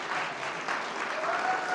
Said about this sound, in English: Let's give them a round of applause because they're now married.